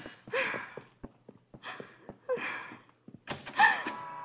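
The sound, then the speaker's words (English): Several sharp knocks on a door, spaced irregularly, mixed with breathy sighs and gasps and a brief creak of movement near the end. “Come at the door”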